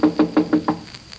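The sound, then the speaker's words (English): Five quick, evenly spaced knocks on Uncle Jim's closed office door, each a solid, moderately loud rap, followed by a brief quiet pause with no voices. “His door's closed. We better knock.”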